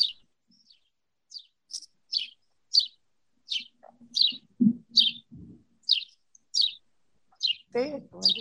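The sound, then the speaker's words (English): A bird chirps and sings in a steady series of bright, clear tweets, about a dozen evenly spaced notes, with brief low voice sounds murmuring underneath partway through and near the end. “The bird's trying to sing it for y'all.”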